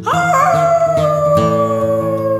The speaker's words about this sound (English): And with that howl, she was gone.